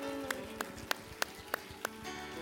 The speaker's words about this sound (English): Would you clap your hands one more time to Jesus?